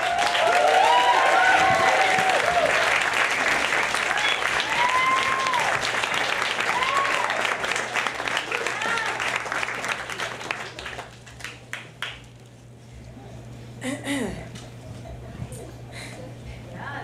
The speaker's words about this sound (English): Very warm round of applause, please,